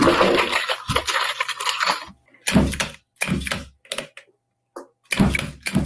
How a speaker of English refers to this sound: So he has the key punch now, and he's opening up the cylinder. Using the big bro to get that open.